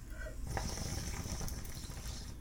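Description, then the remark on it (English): Water bubbling and gurgling in a bong as someone takes a hit of Strawberry Diesel cannabis through terpene-infused Toke Tonic bong water, a steady churn that starts after a brief pause and runs for about two seconds, with no voices. “I'm going to hit some right now, but I have some other stuff too, but let me do a bong rip real quick.”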